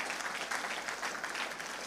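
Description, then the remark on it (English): Steady audience applause for full-time campus missionaries, a dense wash of many hands clapping at an even, fairly loud level with no voices standing out. “Can we just give a warm up applause to our campus missionaries?”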